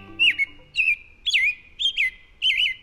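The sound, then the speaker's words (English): A female American robin sings a run of five clear, warbling whistled phrases, each rising and falling, spaced about half a second apart, with no talking and a quiet background. “This American robin will lay one egg per day for 3 to 4 days.”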